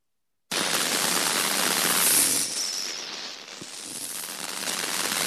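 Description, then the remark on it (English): Harsh, continuous radio static from a spirit box sweeps across channels, a dense crackling hiss that dips briefly in the middle before rising again, with a faint high whistle near the start. “A lot of static so far, isn't it? Yeah, it's a lot of static.”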